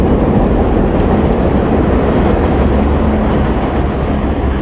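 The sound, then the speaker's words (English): A shuttle train, probably about three cars long, rumbles past, a loud, steady roar of wheels and rail noise that fills the whole clip without easing off, with no voices over it. “And here comes another beautiful train. Let that pass.”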